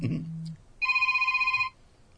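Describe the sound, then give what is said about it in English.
A telephone rings in one sustained electronic trill lasting about a second, bright and fairly loud, following a brief burst of voice at the start. “We'll go ahead and silence that phone call.”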